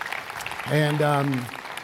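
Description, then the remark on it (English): An audience applauds with a steady patter of clapping throughout, while a single sustained voiced cheer rises over it for under a second before fading back into the claps. “And God keeps using you and your church, and I don't know about you, but to me, that deserves a great applause to God for that.”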